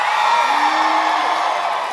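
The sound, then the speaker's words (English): Steady live-show audience applause in Columbus at a Schmanners taping, mixed with cheers and whoops, fills the full two seconds, a loud, dense wash of clapping that holds at an even level without breaks. “It's a double applause.”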